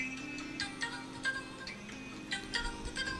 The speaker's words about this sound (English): Yeah, I don't know whose ringtone that is, but I just want them to sing it. I don't even want the actual ringtone.